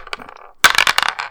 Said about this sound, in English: Let's roll the dice and let's talk about it.